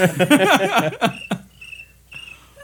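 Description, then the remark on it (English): A person imitates a cricket with a rapid burst of high, trilling chirps, fairly loud, followed by a couple of fainter short chirps after a brief pause. “Make your cricket sound.”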